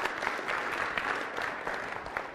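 An audience claps steadily, a dense patter of many hands at an even level throughout with no voices.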